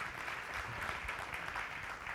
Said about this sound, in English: Why don't you guys give her a round of applause this morning?